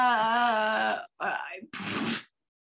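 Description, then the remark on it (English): A voice imitates fire crackling in the wind: a loud, wavering moan for about a second, then a short crackly burst and a harsh, hissing rush before it cuts off. “That was an impression of fire. Oh. You know, fire with the wind and the crackling.”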